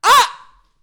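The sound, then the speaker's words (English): A single loud, explosive sneeze with a sharp, breathy burst and a brief voiced pitch that fades into a soft trailing hiss, with no talking. “I have to sneeze.”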